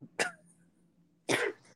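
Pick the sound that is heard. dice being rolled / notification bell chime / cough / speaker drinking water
cough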